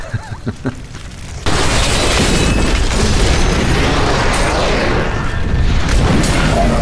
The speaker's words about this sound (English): Gotta stop standing in the explosions.